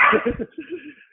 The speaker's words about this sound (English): My dog wants me to come out and watch him bark at squirrels. He's very insistent about this for some reason.